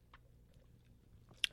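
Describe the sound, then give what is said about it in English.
Quiet mouth noises of someone sipping and chewing bubble tea from Tea Do in Philadelphia: soft wet clicks over a low hum, ending in one sharper smack. No one speaks. “Take a short sip of this and tell me what you think.”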